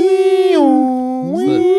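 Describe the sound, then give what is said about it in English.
A voice imitates a European two-tone siren, the 'Jason Bourne' siren, holding a loud, steady wail that drops to a lower pitch and then climbs back up, with a second voice briefly joining near the end. “Put in one of those European ones. It sounded like that, yeah.”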